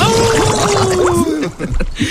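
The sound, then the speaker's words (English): A wolf's long, steady howl holds one pitch and sinks slightly over about a second, then fades into a jumble of low murmuring and muffled noise. “He lives only a block from the studio and we can usually hear him howling out the window in the morning.”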